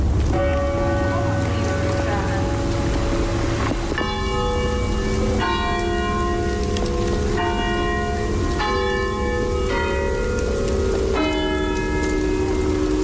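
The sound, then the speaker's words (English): The bells of Shandon church, rung by pulling ropes, ring out loudly in a steady sequence of strikes about a second and a half apart, their tones overlapping and lingering over a constant hiss like rain. “We'll have a listen to his audio on the bells of Shandon after the break.”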